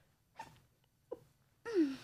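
A single close, loud sneeze preceded by two short catching breaths, building to a sharp burst at the end; no one speaks.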